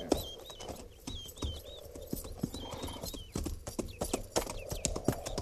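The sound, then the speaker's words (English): Several horses' hooves clip-clop steadily and unevenly, a continuous patter of overlapping hoofbeats with faint high chirping in the background and no talking. “Ease those cinches and lead the mounts down to the stream there in water.”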